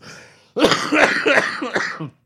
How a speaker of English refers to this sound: Why are you going to make me laugh like that? Because it's funny to make you watch you cough and have to edit this out.